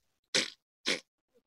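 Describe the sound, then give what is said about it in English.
A voice imitates a nightingale's call from cover: two short, harsh, raspy bursts separated by a brief pause, loud and buzzy, with nothing else around them. “do me the nightingale in cover.”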